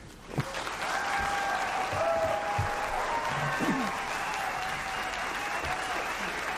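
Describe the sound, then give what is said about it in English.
An audience at a debate applauds steadily for several seconds as Libertarian candidate Spike Cohen is introduced, a dense wash of clapping at an even level, with faint crowd murmur and a few brief voice sounds underneath. “Clap for that, you stupid bastards.”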